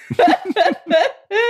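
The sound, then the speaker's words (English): A run of four harsh, throaty coughs in quick succession, each with a raspy voiced edge, loud with brief gaps between them. “Is it activated by coughing?”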